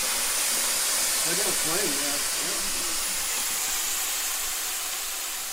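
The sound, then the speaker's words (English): A vacuum cleaner used for chimney sweeping roars steadily for the whole stretch, a loud, even whooshing hiss. A brief, faint voice murmurs underneath partway through. “Keep the vacuum.”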